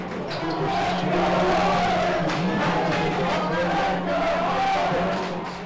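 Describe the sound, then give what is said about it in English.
A crowd of basketball fans cheers in a crowded bar, a steady loud roar of overlapping voices with a low hum underneath and scattered sharp thumps throughout. “When you first think of March Madness, you probably think of basketball fans cheering in crowded bars.”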